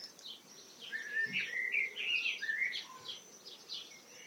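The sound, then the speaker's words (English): Four or five swifts flying over a garden call in a flurry of shrill, high-pitched screeching that overlaps and swells, then trails off into fainter scattered screams with no voices present. “Swift.”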